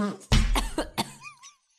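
A harsh burst of coughing from a person whose coffee went down the wrong way, several rough hacks in quick succession, trailing off into a faint wheezy breath at the end, with no talking.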